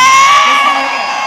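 A concert crowd cheers and screams loudly as the performer tells people to leave a man in the audience alone, a dense wash of many overlapping high voices that holds steady for just over a second, easing slightly toward the end.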